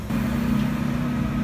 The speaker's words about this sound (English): We got a garbage truck.